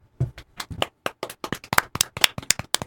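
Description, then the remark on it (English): A few people clap for themselves after finishing a performance, an uneven, lively burst of sharp claps lasting a few seconds, with no talking over it. “Clapping for ourselves.”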